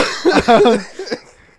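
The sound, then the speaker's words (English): A loud cough right into the microphone: one harsh, rasping burst followed by a couple of smaller trailing coughs that fade out, with no talking. “Sorry for the cough of the mic there, sorry.”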